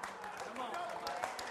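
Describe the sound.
An audience applauds a pastor with a steady patter of clapping, fairly soft and continuous, mixed with murmuring and cheering voices over the short stretch.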